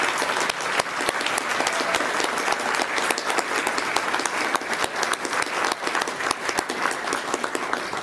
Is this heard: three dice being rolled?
no